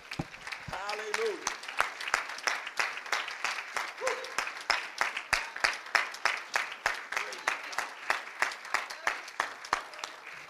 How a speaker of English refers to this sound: Would you clap your hands and give God praise if you would?